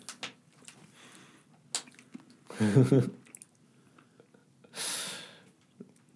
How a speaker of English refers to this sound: What's worse is we can hear you chewing in the microphone.